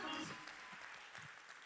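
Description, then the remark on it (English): An audience claps continuously, a dense, steady patter of many hands at moderate level, with some crowd voices mixed in beneath the applause. “Clap your hands like it's your body that got healed tonight.”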